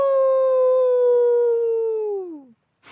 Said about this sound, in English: Whoosh! The big bad wolf rushed into the flock of sheep. With a howl, it picked up the little sheep in its mouth.